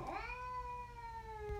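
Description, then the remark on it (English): A single drawn-out meow from a large bobcat, loud, sliding slightly downward in pitch and holding steady for over a second before fading, with no talking over it. “And listen to just the pure bobcat.”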